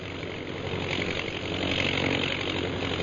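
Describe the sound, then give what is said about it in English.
A low, steady drone of ten propeller bomber planes flying low overhead, a dense rumbling roar that swells slightly louder over a few seconds, with no voices. “That plane's flying pretty low.”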